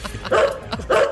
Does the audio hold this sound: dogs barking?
yes